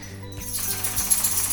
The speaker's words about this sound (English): As my dog is shaking in the background. Oh my gosh. I should know better to take her collar off. But I didn't.